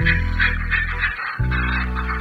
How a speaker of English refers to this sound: A feature of numerous seabirds, including the bird with attributes just described, today's featured feathered friend, the northern fulmar.